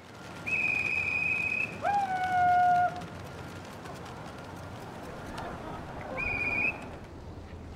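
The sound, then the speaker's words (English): A flock of pigeons passes overhead in the night sky on a dry evening, swooping, gliding, spinning and dive-bombing, heard as steady, clear whistling tones that swoop lower in pitch, fade, then return, over a soft, noisy outdoor background. “But on another much drier evening, the show did go on to a sold-out house, and the pigeons put on quite a show.”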